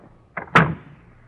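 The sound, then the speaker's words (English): A door swings shut: a light click followed a moment later by a firm, solid thump that fades quickly into quiet. No voices. “I'll see you to the door, Osgood.”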